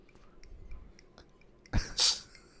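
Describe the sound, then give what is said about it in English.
A crisp crunch of someone biting into a dark chocolate digestive biscuit eaten for breakfast, a short sharp bite followed by a brighter crackle, with faint mouth clicks. “If you hear a crunching noise, it's some dark chocolate digestives for breakfast.”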